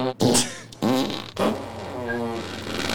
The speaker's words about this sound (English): What is your guys' fascination with fart? And it went on for more from there.